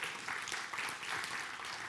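A crowd applauds steadily for a couple of seconds, a dense wash of many hands clapping at once, fairly loud and continuous with no voices standing out.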